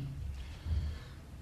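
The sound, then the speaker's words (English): A speaker with a very bad cough coughs twice during a speech, muffled and breathy, low and thick in tone, with a short pause between them and no talking. “Sorry, I've got a very bad cough, sorry.”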